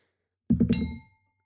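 A die rolled for stealth clatters across a hard surface and strikes a wine glass, giving a bright, high clink whose thin ringing tone fades out over about half a second.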